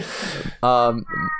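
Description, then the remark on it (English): An automatic cat feeder goes off, giving two loud, buzzy tonal bursts, one long and one shorter, with a meow-like quality and a murmur of voices around them. “Is that your cat food that's thing? The cat God feeder.”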